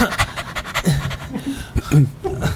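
A dog pants rapidly and steadily, quick breathy huffs repeating in a continuous rhythm with a few faint voiced sounds mixed in.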